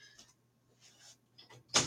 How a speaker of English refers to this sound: Excuse me for a moment, folks. I'm going to open a door.